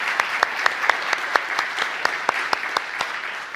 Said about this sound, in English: I think the boys and girls have absolutely been brilliant this morning. I think we should maybe just give them one more round of applause just to thank them for all that they've done.